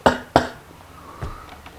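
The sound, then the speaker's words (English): A person coughs twice in quick succession, two sharp, fairly loud bursts in a room with 11 people during the coronavirus outbreak in the Palouse, followed by faint background sounds and no speech. “Some people think the only way out of, say, fear, say the coronavirus is sweeping the Palouse, and here we are with 11 people in the room, and somebody starts to cough.”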